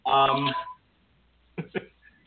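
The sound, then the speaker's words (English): A telephone rings with a bright, electronic tone: one sustained ring burst, then a pause and two quick short chirps. It is fairly clear. “take the goddamn phone off your hook”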